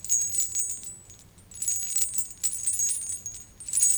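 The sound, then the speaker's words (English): Soft jingling of camel bells as a camel caravan comes to rest, a steady patter of bright, high metallic tinkles that ebbs briefly and then swells again, with no voices. “The soft jingling of the camel's bells as they finally come to rest.”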